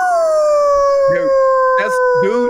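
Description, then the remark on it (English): A person imitates a wolf with one long, loud, steady howl that slowly drifts lower in pitch, lasting the whole moment while other voices briefly talk over it. “That's not a dog. That's a wolf, a dude. That's a wolf.”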